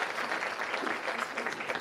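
A crowd claps steadily, a dense wash of many hands applauding together at moderate volume, sustained without pause for a couple of seconds, welcoming a guest called up to the front.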